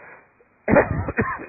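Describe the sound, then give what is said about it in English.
A man coughs, a loud, harsh burst followed by a second shorter cough, after a brief quiet moment with no talking. “Little cough of mine is still present with me.”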